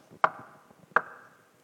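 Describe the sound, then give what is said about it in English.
Two sharp, solid knocks on the wooden door of a small house, spaced under a second apart, each ringing briefly with a hollow resonance before fading into quiet: Nicodemus knocking at the house where Jesus is staying. “He slips out the door down the winding cobble street and comes to the door of a small house. Jesus is staying here, he's been told. Nicodemus knocks.”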